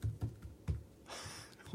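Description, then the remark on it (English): Soft, scattered keystrokes on a computer keyboard, a handful of quiet clicks with irregular gaps and a faint background hiss, no voices. “I'm just typing and there it is.”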